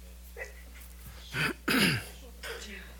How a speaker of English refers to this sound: She was sneezing in tongues, I think.